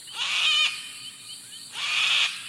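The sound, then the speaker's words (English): Two loud, harsh screeches from a sulfur-crested cockatoo, each about half a second long with a short gap between them, raspy and piercing, with no talking. “Imagine you're about to shake hands, but with a sulfur-crested cockatoo.”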